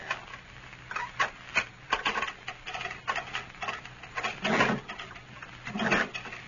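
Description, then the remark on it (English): Keys rattle and a lock clicks before a heavy jail cell door is unlocked and shoved open with a scrape, with uneven metallic clatters and clunks over several seconds and no voices. “Just unlock the door now, Lum, and shove it back open that way for me.”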